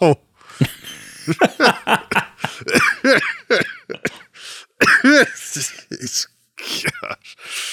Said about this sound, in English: … with his smoker's cough.